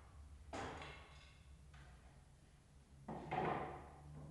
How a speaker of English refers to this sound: In the background, we can hear a skilled union carpenter sawing away at a board. They're doing a terrific job.